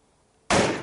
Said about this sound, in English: Wow, that was really quite loud. I'm glad I was standing far enough away for it to not hurt my ears. That was an almighty bang, but there was less gunpowder in that banger than you set a light to earlier, and a very different response.